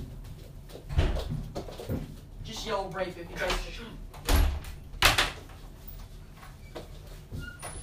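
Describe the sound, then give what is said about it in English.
A door in a house is pushed shut to lock someone out, with a few solid thumps and knocks spread over several seconds, while people talk in the background. “Well, how about we just, like, lock him out? Yeah, can he do that? Of his own house? And there's another door right here.”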